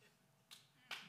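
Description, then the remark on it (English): A lone audience member claps twice, two crisp, sharp hand claps about half a second apart, with no talking. “Someone had to clap for that.”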